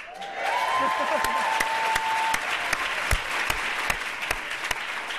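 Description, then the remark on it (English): A large audience at a 100 Years of Votes for Women evening event claps steadily in a dense, sustained wave of applause, with a few louder individual claps standing out and faint voices murmuring beneath. “I can assure you that's not the last time you have an opportunity to clap at an important moment in the course of this evening, but a wonderful way to start us off.”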